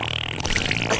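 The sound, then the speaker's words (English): A low, buzzy sputtering sound resembling a fart, sustained for about a second with a raspy, noisy texture and a brief sharper burst near the end, fairly loud. “So the fart noises finally came out.”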